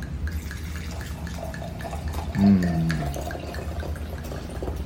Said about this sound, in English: All right. So, pour myself a glass.